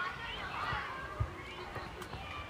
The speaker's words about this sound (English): Towards the last day of term, there's lots of kids playing in the Wimbledon Chase Primary School playground, but in a week's time, or just beyond, it will be quiet, as the kids will be on summer holidays.